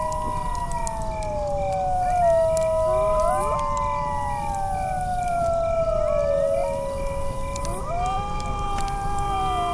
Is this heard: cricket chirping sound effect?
no